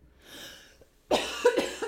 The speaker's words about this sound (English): I vampire coughed into my sleeve.